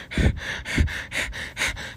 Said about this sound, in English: You stop as your heart starts to beat very fast. Your breathing becoming quick and heavy.